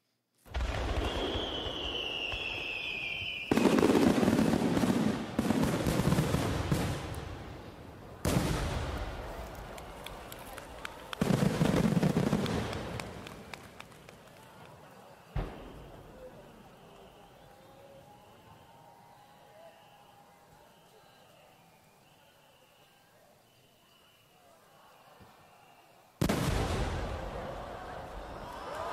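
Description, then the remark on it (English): One of the largest single fireworks ever shot whistles upward, then bursts with heavy booming blasts and a sharp crack, followed by a long, fading crackle of many smaller fireworks coming off its sides. “That one firework goes up and explodes, and then a million other fireworks come off the side.”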